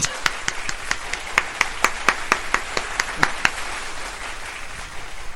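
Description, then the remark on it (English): Audience applause comes as a steady, fairly quick run of sharp, crisp claps over a soft wash of background noise, then the clapping thins out and fades away after a few seconds. “Applaud.”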